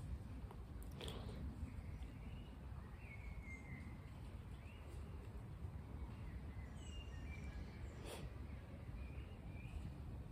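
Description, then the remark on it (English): Faint, scattered bird chirps drift over a steady outdoor hiss in a park on a hot, sticky day, with a couple of brief rustles or clicks and no one talking. “There's some birds and there were more people. It seems a bit more quiet here.”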